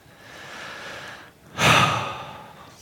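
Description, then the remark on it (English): One slow, deep breath taken as part of a calming relaxation exercise: a long soft inhale, a short pause, then a louder, airy exhale that trails off gradually. No one speaks. “That's why the breathing and stuff is there.”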